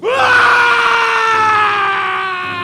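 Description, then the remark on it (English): A single long, loud human scream of despair, rising sharply at the start and then holding a strained, sustained pitch before slowly weakening, heard alone. “But the agony of my soul found vent in one loud, long, and final scream of despair.”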